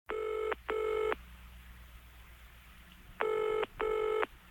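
A telephone rings in two double bursts of bright, buzzing tone separated by a pause of quiet line hiss. The ringing is clear, with no voices.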